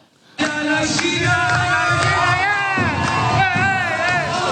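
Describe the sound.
A large crowd cheers and shouts steadily after a sudden start, with overlapping voices and whoops forming a dense, loud roar that holds for several seconds.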